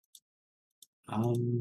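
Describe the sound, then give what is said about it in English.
Two crisp, light computer mouse clicks spaced well apart, quiet, followed by a person starting to speak loudly right after the second click. “No, I'm actually just like clicking around in my lure right now.”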